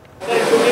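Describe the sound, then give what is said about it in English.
Food sizzles in a hot pan in the kitchen of Romer's restaurant in Metro Vancouver: a loud, steady, crackling hiss starts abruptly after a brief quiet moment and holds without a break, with a faint tonal hum beneath it. “The kitchens are sizzling at Romer's, thanks in part to the foreign worker program, which is helping with employee turnover.”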